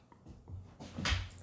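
An old dog named Bella gives a brief, low whimpering groan, followed by a soft rustling thump as it settles onto an old wooden floor; no one speaks.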